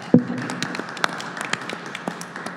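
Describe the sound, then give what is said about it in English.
An audience claps steadily for panelists for a couple of seconds, with a dense, even patter of many hands and a few sharper claps standing out near the start. “Let's clap for our awesome panelists tonight.”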